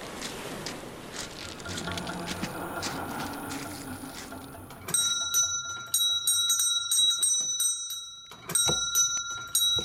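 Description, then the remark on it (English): A servant's bell, rung by the lady of the house, rings out in a rapid, jangling series of bright metallic strikes, following a stretch of rustling, muffled background noise, with no voices present. “That is the lady of the house ringing, you know, Dotty.”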